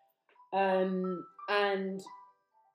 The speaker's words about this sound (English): My phone's ringing in the middle of a podcast. How damn rude.